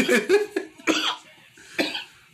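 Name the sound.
a man coughing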